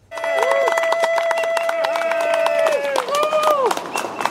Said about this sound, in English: It's a little early for the 7 o'clock cheer, but this ovation is for one healthcare worker,